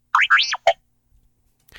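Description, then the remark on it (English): The Star Wars droid R2-D2 beeps with joy as the Empire is defeated: a quick run of bright electronic robot chirps, three rising, swooping warbles in a row, cheerful and loud, followed by silence and a faint hiss at the end. “And R2-D2 beeps with joy.”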